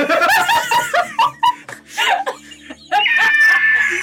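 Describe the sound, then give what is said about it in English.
A voice imitates a pterodactyl screech: a run of choppy, cackling squawks, then a sustained, piercing high shriek held for about a second, loud. “Yeah, I mean pterodactyl noises.”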